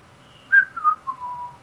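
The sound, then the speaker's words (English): A person whistles a short, wandering tune to fill time, the clear notes sliding from higher to lower pitches and ending on a held tone, with no talking. “I'm whistling to fill time.”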